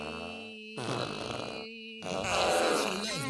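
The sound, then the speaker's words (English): Two raspy, sputtering fart noises in a row, the second longer and louder, with a faint steady hum in the background and no talking. “Should we leave out on a little fart there?”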